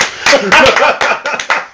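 A few people clap in a quick, uneven burst of sharp, bright claps lasting under two seconds, with some vocal sound mixed in.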